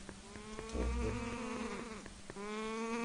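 A buzzy, nasal cry of the Kakarok, a bird creature from the video game Wind Waker, a sustained warbling tone rich in harmonics that wavers and bends in pitch, with a low rumble midway and a brief break before resuming.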